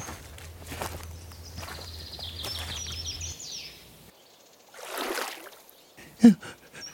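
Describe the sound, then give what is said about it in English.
Someone wades through a cold river, with irregular sloshing splashes and heavy steps in the water, a louder surge of splashing near the end, and faint bird chirps early on. “The river. The river is cold.”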